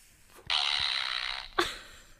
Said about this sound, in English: I still have my fart machine here, so I will make a fart noise.